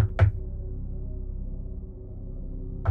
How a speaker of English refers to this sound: I awakened in the middle of the night to somebody knocking at my door. 2 a.m. on the dot.